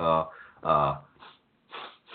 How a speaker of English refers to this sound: I don't know if you can hear that. It's weird. I don't know why I keep doing Foley. You're not referring to your incessant coughing? Yes, this is the aftermath of me sounding like a smoker last week.